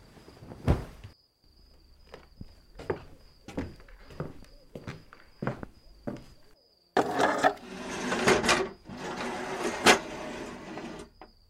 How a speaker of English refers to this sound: Before I fell asleep, I decided to barricade the door again with the chairs.